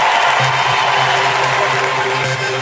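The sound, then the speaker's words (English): A loud, steady wash of audience applause and cheering as the crowd claps and makes noise at a speaker's call, dense and continuous for a few seconds, with no single voice standing out. “All the people who are walking into a season of success, clap your hands.”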